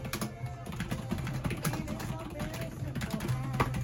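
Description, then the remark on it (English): Steady, rapid typing on a quiet Logitech computer keyboard, testing how the typing feels, soft clustered key clicks running continuously, with a low background hum and faint voice-like sounds underneath. “Let's see how the typing feels.”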